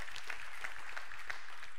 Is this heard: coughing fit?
no